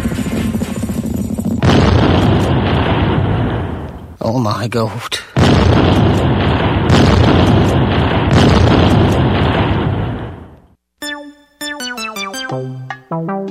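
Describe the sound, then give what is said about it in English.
Loud, heavy cannon fire booms in a dense, continuous barrage for several seconds, with a brief exclaiming voice, before it cuts off and gives way to tonal music. “As the cannons thunder, on board the gallows is thunder.”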